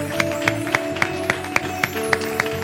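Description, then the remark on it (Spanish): An audience at a bilingual English and Spanish church service claps in praise of Jesus in a steady, even rhythm, about four sharp claps per second, over a sustained musical drone of held tones. “Si le vamos a dar un aplauso.”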